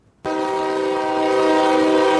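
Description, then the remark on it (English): The horn of a train carrying coal in Kentucky blasts suddenly and holds one loud, steady, brassy chord for about two seconds, with a faint low rail rumble beneath and no voices. “Some of those workers have been sitting on the railroad tracks for days, blocking a train carrying the coal.”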